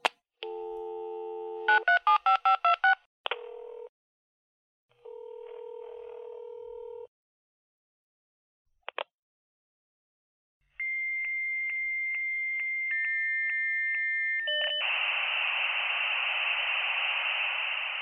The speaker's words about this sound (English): And while we're on the subject of technical discussions, remember when I played that modem sound at the beginning of the show? You know, this one?